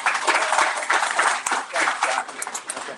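A crowd applauds steadily for about three seconds for a Waterworks Marine supporter of Chauncey's Great Outdoors, a dense, loud wash of overlapping hand claps with a few sharper individual claps standing out.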